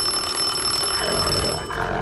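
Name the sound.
doorbell ringing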